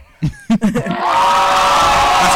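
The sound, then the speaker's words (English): A few short shouted voices, then an audience erupts into another round of loud, sustained applause and cheering that holds steady and full to the end. “Do another round of applause.”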